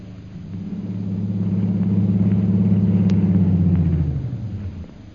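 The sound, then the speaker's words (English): An airplane engine warming up in Mandalay for a long flight to Upper Burma, a deep, steady droning hum with a throbbing low tone that swells louder, holds, then winds down and fades in the final second. No one speaks. “As her plane is being warmed up for its long flight to Upper Burma, Myra Trent enters the airport.”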